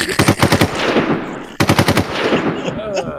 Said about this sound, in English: Shots fired. Shots fired.